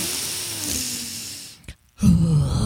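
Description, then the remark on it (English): A person imitates the heavy, exaggerated breathing of people in a yoga class: a long, loud breathy exhale, a brief pause, then another forceful breath with a slight voiced, groaning tone. Prominent, with no talking. “So then I lie down, I'm lying there, you know, and then people start fucking breathing.”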